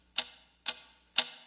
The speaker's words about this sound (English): So 20 years ago, the mysterious ticking noise video. That's basically the one I think everybody's seeing. They hear this weird ticking noise.